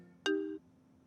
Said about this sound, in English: Well, I keep getting phone calls, so I might have to... edit that out.